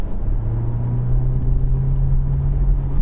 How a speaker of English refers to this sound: That felt urgent. As a passenger, that felt like a car that was properly accelerated. No, it definitely doesn't hang around. And I think, but it's more impressive when you've got a full battery, because then you don't get that engine noise.